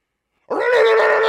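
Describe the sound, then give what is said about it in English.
A person imitates a dog's subtle, low growl, the sound a dog made to wake a sleeping houseguest: after a brief silence, one loud, sustained, rough and buzzy vocal tone rises in and holds steady until the end. “But every time I said anything, the dog would wake me up by going very subtly.”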